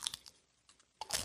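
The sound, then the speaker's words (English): Crisp crunching of a Dorito tortilla chip being bitten and chewed: a few sharp, crackly bursts, a brief quieter lull, then a louder flurry of crunches. No talking. “This is another Dorito. This is another triangle.”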